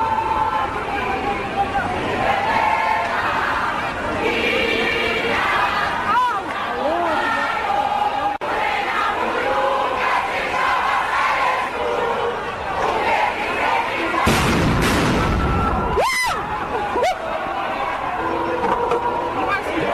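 A large crowd of student protesters chants "Blade must fall" and "fees must fall" and shouts in loud, continuous babble at the parliamentary precinct, broken near the end by a couple of sharp, explosive bangs of stun grenades used by public order police driving them out.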